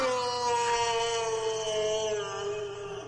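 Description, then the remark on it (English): A sound effect from a Star Wars soundboard app plays: one long, loud wailing tone with rich harmonics, its pitch sliding slowly downward over about three seconds, smeared with heavy reverb. “Stan just found the Star Wars app, and we've been playing, or he's been playing Japan sound effects for the last 15 minutes, and it's amazing.”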